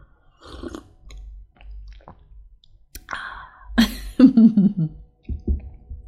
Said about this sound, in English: And then for recording this episode, I just made myself a fresh K-cup of Starbucks Cinnamon Dolce coffee, and it is delicious. I'm going to go ahead and take a sip here while we're together.